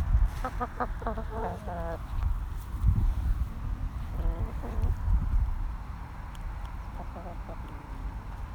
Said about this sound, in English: Just going to leave you with some sounds of the hens. It's a lovely sound.